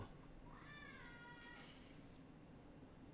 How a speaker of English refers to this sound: Cat? No, that was not a cat. That was one of the kids upstairs.